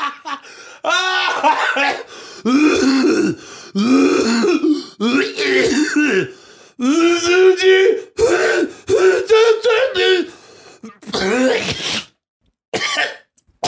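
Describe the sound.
A long, loud coughing fit: repeated hacking bursts and throat clearing in a steady run, some coughs drawn out and voiced in an exaggerated way, ending in a few short coughs.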